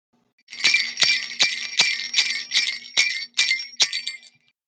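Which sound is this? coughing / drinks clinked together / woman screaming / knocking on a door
drinks clinked together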